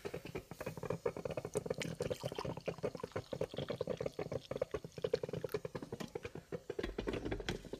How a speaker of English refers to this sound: And here I go. I'm gonna pour this first cup of coffee.